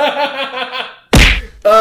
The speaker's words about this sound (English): And then he turns to this hippie guy, and he says, hey, man. Attacks. Oh god. And he punches him right in the fucking face.